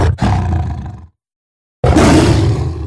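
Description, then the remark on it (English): Two loud, rumbling big-cat roars from lion and tiger samples, used in early work to scope out the length and shape of sounds for a game, separated by a second of silence; each is deep and growling with a raspy edge, with no talking. “And all I'm doing at that stage is kind of scoping out the length and shape of the sounds using some samples of big cats, like lions and tigers and things like that.”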